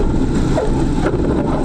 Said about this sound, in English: You land on a highway, of course, and pray all the cars get out of the way. Buckle your seatbelt. This plane is coming in for an emergency landing on a busy four-lane highway.